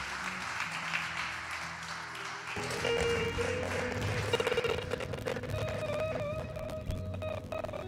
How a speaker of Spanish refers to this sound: ¿Cuánto le pueden dar un aplauso a Dios? Colócate de pie, iglesia.